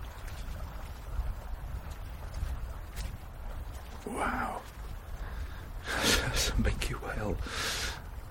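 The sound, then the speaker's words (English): A whale surfaces to breathe about 3 meters away off a sea-ice edge on a frozen sea, above about 300 metres of seawater: a brief breathy whoosh, then a louder, longer burst of rushing exhales and inhales, over a steady low rumble of background noise. “Surfaced to breathe about 3 meters away from me off this ice edge.”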